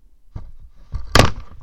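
A microphone gets knocked over by someone jumping up: two dull low thumps, then a loud, sharp clattering bang with a brief rattle and rustle of handling noise as it settles.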